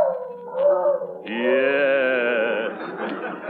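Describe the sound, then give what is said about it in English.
A dog howls, starting with a brief whiny lead-in, then breaking into a long, sustained, wavering howl that holds for a couple of seconds before trailing off. No one speaks. “Lonesome? Not if he keeps howling like that, he won't.”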